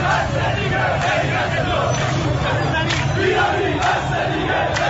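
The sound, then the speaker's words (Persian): A large protest crowd of at least 4,000 to 5,000 people in Tehran, bazaar merchants joined by others, chants and shouts together in a dense, continuous roar, voices blending into a steady rhythmic clamor that stays loud throughout. “یه عده از مردم اومدن به بازاریا تو تهران اضافه شدن و شماری از مردم، منظورش این تعداد جمعیت، این تعداد جمعیت بله شماری، این شماری از مردم یه نزدیک حداقل 4-5000 نفر اینجا هستن حداقل از نظر سی ان ان.”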